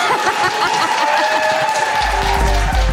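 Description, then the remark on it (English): A small group claps steadily for a few seconds, a dense patter of hands with some voices and chuckles mixed in, and a low rumble comes in near the end. “Could you all clap now?”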